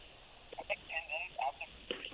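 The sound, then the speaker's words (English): A telephone call comes through on the line during the ENM show: a thin, narrow-band hiss with brief, muffled voice-like fragments, as if a caller is just being connected. “Wow, a rare phone call at ENM.”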